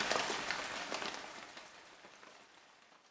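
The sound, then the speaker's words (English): Heavy rain pours down in a dense, crackling hiss with scattered sharper drop impacts, steady at first and then gradually easing and growing fainter toward the end. No voices. “Soon it began to rain. The drops fell faster and faster until they came down by the bucketful.”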